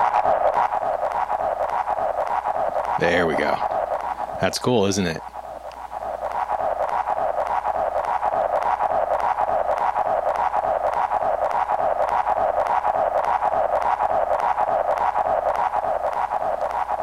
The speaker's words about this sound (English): And all of that was made while you were listening to it. And I'm not saying it's fantastic, but it's testament to the value of digital is that I was able to build something up just with one concept of one blip in a space and then adding pitch